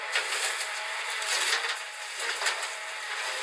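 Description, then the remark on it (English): A played recording of garbage truck sounds: a steady, harsh grinding and crushing noise, thin and bright with little low rumble, swelling slightly in a few spots and continuing without talk. “Now, Polly, play some garbage truck sounds.”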